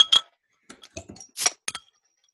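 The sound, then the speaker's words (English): A Magnified Hops beer being cracked open: a few sharp metallic clicks and clinks, then a short fizzy burst and a final light clink, with no talking. “I also have a beer this time. Yeah, I have met multiple of those guys. Yeah, I'm just gonna go ahead and crack around open.”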